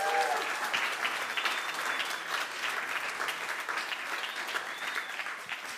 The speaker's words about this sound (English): Now, thanks, guys. You can give them a round of applause and sit down.